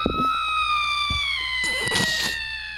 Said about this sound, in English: That scream lasts like 5 seconds that's, too long. That's a long scream.